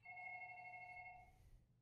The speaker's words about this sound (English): This next clip is my reaction to the first time we hear the phone ring during the movie.